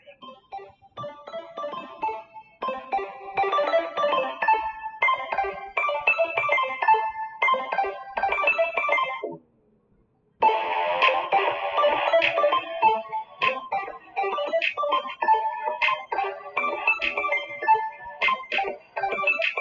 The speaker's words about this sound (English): Stick around to the end for some good, and enjoy the theme song that I recorded from my cell phone.